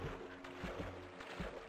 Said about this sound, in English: Oh, dang it. Now my boat's going out to sea.